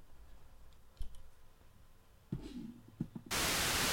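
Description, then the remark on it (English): A few quiet clicks and knob fiddling as a radio is turned on and tuned from the far left of the dial at 88.1, then a sudden burst of loud, steady radio static that fills the last second and continues without letting up. “There's the static.”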